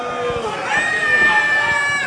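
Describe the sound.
A wrestling crowd booing a wrestler during a match, in a loud, sustained wave of many voices, the jeering swelling slightly after the first second and holding steady to the end.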